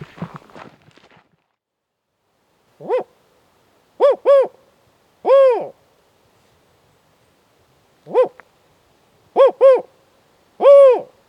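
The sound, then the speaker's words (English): A person imitates spotted owl hoots to call out owls while hiking in a park in December, calling twice in a four-note pattern: a single hoot, a quick pair, then a drawn-out final hoot. The calls are clear, after brief rustling. “is hooting for the owls to see if any reveal themselves to us.”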